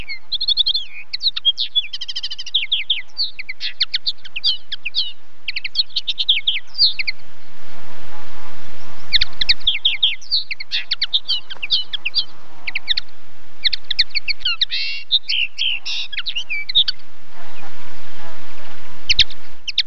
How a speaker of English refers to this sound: Over the other side of the path, we've got several pairs of linnets which set aside their differences to play the safety in numbers game and nest close by to each other. And the linnet song is a sort of jaunty, syncopated jazz tune.